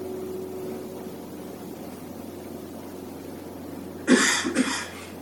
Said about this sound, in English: Someone coughs and immediately that becomes prominent.